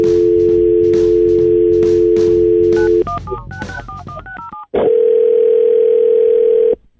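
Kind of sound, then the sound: signal or alarm, telephone dialing and ringing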